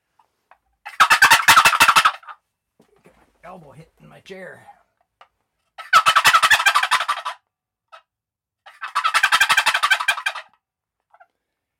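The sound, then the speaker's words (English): A turkey call sounds three loud, rapid rattling gobbles, each lasting a second or two, separated by pauses in which a person speaks briefly. “And this one does a fairly decent gobble, but the walnut, I think, is better.”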